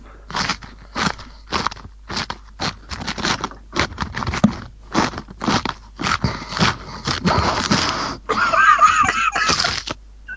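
Loud crunching of a man chewing crisp iceberg lettuce right against a microphone, in a steady rhythmic run of wet, snappy bites that blur into a denser crunch near the end.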